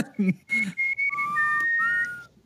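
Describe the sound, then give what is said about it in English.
A person whistles a short tune: a few quick, clear notes, then longer sliding tones that rise and fall before stopping. “I don't know what that whistle is, but that's some Hogwarts shit.”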